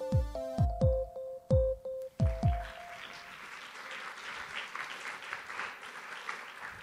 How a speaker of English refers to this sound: You always got to appreciate the brave soul who does the first initial clap. And then everyone's like, oh, we're doing this. Let's do it. Let's clap.